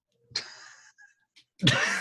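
Two sharp, breathy sneezes about a second apart, each a sudden loud burst of hissing noise that trails off, with a brief quiet gap between them.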